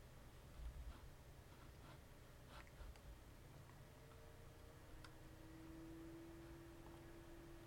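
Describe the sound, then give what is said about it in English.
A quiet, steady electronic whir of a computer cooling fan, with a soft tonal whine rising partway through and a few faint scattered clicks over the constant hum. “My computer is just, you can hear the fan on it.”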